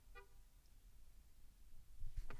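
Car horns give a short, bright honk at the start, then another quick blast near the end, heard from inside a car over a steady low rumble of traffic with no one speaking.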